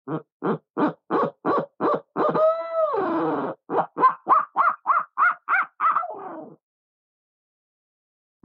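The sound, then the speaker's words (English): A handmade owl hooter call imitates a barred owl, with a rhythmic series of loud hoots building into a drawn-out, wavering cry and another quick string of hoots before falling silent. “But I also make owl hooters.”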